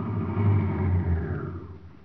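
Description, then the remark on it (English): A car engine rumbles with a deep, steady drone, then gradually winds down and fades as the vehicle slows toward a stop. No voices are heard. “Just step from that car quietly, you.”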